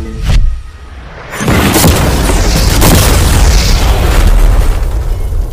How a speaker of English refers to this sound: before we blow up the $300,000 car, we're gonna blow up a normal car to see if the passengers survive